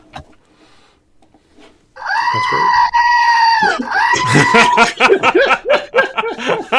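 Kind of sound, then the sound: screaming goat novelty toy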